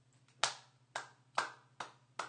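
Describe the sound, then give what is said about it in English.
Five sharp hand claps at a slow, steady pace, each a crisp slap that rings out briefly, with a faint low hum running underneath and no talking. “that's me applauding.”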